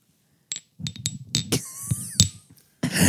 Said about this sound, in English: That doesn't even sound like glasses being clinked together. You're just clinking sample glasses and now a teacup and a sample bottle. You're in a hotel room and it's early in my house, so piss off.